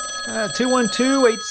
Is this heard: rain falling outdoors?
no